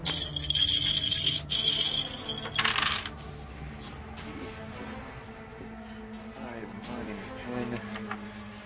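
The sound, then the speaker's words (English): A handful of six-sided dice, grabbed to roll several at once instead of one die four times, clatters and rattles loudly for a few seconds, then settles into quieter, scattered clicks as they come to rest. “Instead of rolling this thing four times, I have a ton of six-siders in here.”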